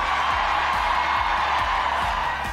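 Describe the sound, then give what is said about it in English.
An audience at a Warnock event in Georgia applauds steadily, a dense wash of many hands clapping at an even, loud level, with a few scattered whoops and crowd noise mixed in, fading slightly at the very end. “Heard the applause there.”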